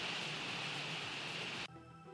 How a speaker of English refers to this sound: So the hailstorm. It was hail. Which is what that was.